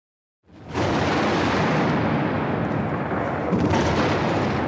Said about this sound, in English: U.S. warships and planes launched the opening salvo of Operation Iraqi Freedom. The attack came in waves.